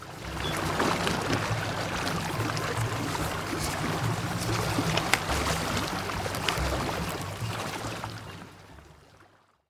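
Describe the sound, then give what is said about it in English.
The San Miguel River, near a festival, rushes and burbles in a steady, even wash with a low rumbling undertone, holding level for several seconds before fading out at the end. No voices. “So I carry my packet out of the festival to the nearby San Miguel River.”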